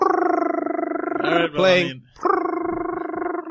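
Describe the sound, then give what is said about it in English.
A loud, drawn-out growling tiger roar sound effect plays in two long stretches, broken by a short burst of speech in between, all prominent. “First of all, that sound is just wrong coming from a tiger.”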